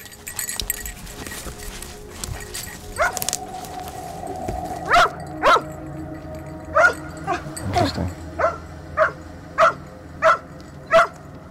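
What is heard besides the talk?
dog barking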